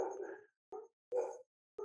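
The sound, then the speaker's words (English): Dogs bark at a stranger outside in four sharp, separate bursts, a longer one first and then three shorter yaps at uneven intervals, clear with silence between them. “And there goes my dogs. Oh, oh. There's a stranger out there.”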